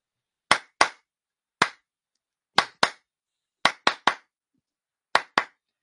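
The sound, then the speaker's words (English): Sharp hand claps sound alone in an irregular rhythmic pattern, some single and some in quick pairs or triplets, crisp with silence between bursts, as a wrestler in the ring after a match delivers a whole promo to the crowd by clapping. “He cut an entire promo by clapping.”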